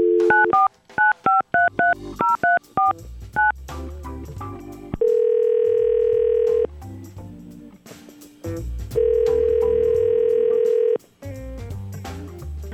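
A rapid string of touch-tone dialing beeps as a phone call is placed on the Y100 radio show, followed by two long, steady ringback tones separated by a pause, all clear with no talking.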